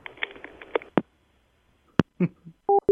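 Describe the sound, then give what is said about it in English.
A couple of short, steady electronic telephone tones beep near the end, following scattered clicks, taps and a brief noisy rustle earlier on. No voices are heard. “I caught one of the phone robots. I got him captured. He's going beep, boop, beep.”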